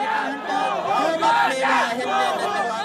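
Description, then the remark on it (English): A large crowd of street protesters in Sri Lanka chants loudly and in unison "Go home, Gota" against President Gotabaya Rajapaksa, many voices rising and falling together in a steady, repeating rhythm of short shouted phrases. “They're screaming, "Go home, Gota. Gota, go home."”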